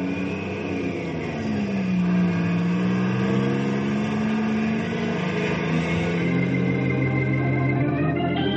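A truck engine runs loud, its pitch rising and falling as it revs up and pulls away to drive down to the warehouse, with a steady mechanical drone throughout and no voices.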